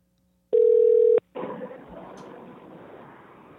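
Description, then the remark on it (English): A single loud burst of telephone ringback tone, a steady electronic hum lasting under a second, followed by a hissy, crackling open line with no talking. “Ringing.”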